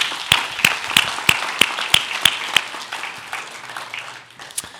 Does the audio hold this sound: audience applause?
yes